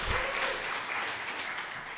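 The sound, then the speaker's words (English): A short burst of crowd applause, dense and steady clapping from many hands that holds at a fairly even level for about two seconds. “Can we get an applause for that?”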